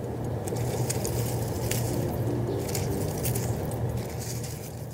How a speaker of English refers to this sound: Yes, so you heard outside, which is totally right. That's actually the sound of leaves rustling. So for this ingredient, we could really be anywhere outside, but probably someplace like a garden.